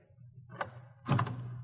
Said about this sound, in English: In less than an hour, I was pounding on her door.